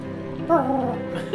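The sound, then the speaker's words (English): A human voice imitates a cat's meow: one drawn-out, wavering whine that rises and then bends downward, followed by a brief higher squeak at the end. “It was someone making the noise of a cat.”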